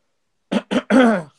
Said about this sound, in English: let me clear my throat,